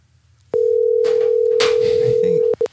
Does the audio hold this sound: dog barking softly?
no